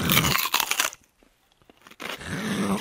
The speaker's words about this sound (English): That's just one of those foods that it's like being in a meeting, and someone comes in and pulls out a bushel of celery and just starts chewing the celery.